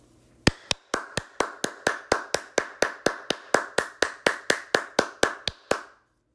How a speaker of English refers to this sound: A round of applause, like seriously.